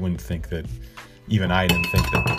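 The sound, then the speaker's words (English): A ceramic tea mug knocks over with a sharp ringing clink that lingers briefly, heard among ongoing talking voices. “Sorry, I just knocked over my tea mug there.”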